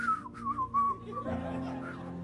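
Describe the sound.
A person whistles a short, wavering melody for about a second, clear, before it gives way to a low voice.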